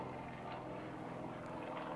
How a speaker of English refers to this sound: Well, wait for the plane.